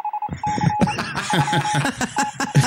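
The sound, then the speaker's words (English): Electronic cell phone beeps ring out in quick succession, a steady tone broken by repeated short chirps and clicks, loud, with no one speaking. “Somebody turn off that Morse code thing.”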